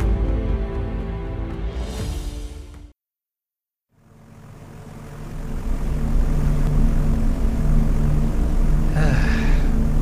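A steady, droning airplane cabin hum on a flight from Washington to Georgia, with low engine rumble and a faint whine. It cuts out briefly to silence, then returns and swells into a fuller, constant roar.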